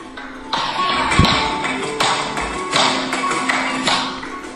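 Flamenco zapateado: heel stamps strike a hollow wooden tablao stage in a syncopated, uneven rhythm, a series of sharp, hollow percussive taps with brief gaps between them, moderately loud and with no voices.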